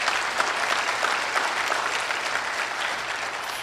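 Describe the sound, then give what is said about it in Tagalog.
Steady, soft applause from the people, a dense wash of many hands clapping at an even level for a few seconds, with no voices standing out. “Mahinang pumalakpak ang mga tao rin.”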